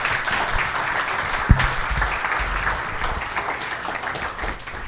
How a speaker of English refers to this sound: Let's give a round of applause to our MLB panel.